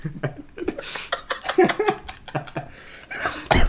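A man coughs in a rapid series of harsh bursts, breathy and uneven, almost tipping into laughter, with a last loud hack at the end.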